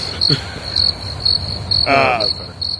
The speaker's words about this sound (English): I think that one deserves crickets.